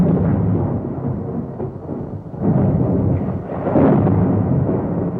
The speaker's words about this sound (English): We're on a rain-drenched, thunderous heath